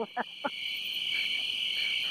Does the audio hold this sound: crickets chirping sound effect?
yes